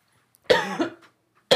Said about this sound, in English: But it like sticks to your taste buds. It does a little bit, and I really don't have much. And I'm like coughing it up right now.